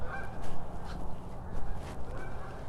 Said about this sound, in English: The geese. I've seen at least 3 or 4, now 5, 6, separate formations of geese making their migration over the subdivision.